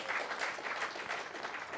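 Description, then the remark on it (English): An audience at a Christian worship service claps their hands to praise the Lord, a dense, steady wash of many overlapping claps with faint rhythmic swells, fairly loud and continuous with no talking. “Clap the hands, praise the Lord.”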